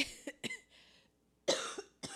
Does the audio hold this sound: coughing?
yes